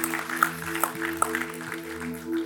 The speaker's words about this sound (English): Yes, go ahead and clap because it's so good. It's so good.